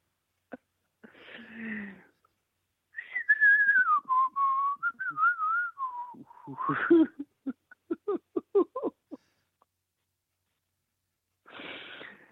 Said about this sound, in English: I'm just laughing at me all whistling there, mate. Yeah. That's a problem. Hang on. It's a lot of fun whistling, isn't it?